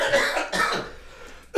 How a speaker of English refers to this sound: Forgive my coughing. That's just my reflux.